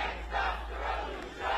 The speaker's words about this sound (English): Voices chanting her name filled the air in the early evening.